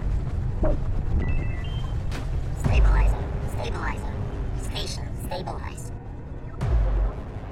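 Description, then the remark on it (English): A spaceship emergency alarm, sounding because the oxygen tank is exposed, beeps and warbles in electronic tones over a constant low rumble, broken by two heavy thuds, with muffled voices faintly in the mix. “why won't the alarm stop?”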